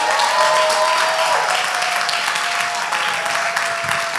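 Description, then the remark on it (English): A crowd claps steadily for a woman being introduced as a new staff member, a dense, even wash of applause that stays loud and constant for about four seconds without any voices over it. “Would you guys give her a round of applause?”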